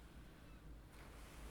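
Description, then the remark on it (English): A steady wash of ocean surf fills the air, a broad continuous rush that swells slightly partway through, with a low rumbling undertone and no voices. “You can hear more waves up ahead now.”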